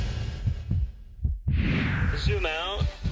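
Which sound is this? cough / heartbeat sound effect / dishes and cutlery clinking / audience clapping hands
heartbeat sound effect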